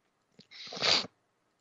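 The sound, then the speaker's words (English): A single human sneeze, fairly loud: a short sharp intake followed by a bright, hissing burst lasting about half a second, then silence. No talking. “Excuse me, I've got some bad sneezes today.”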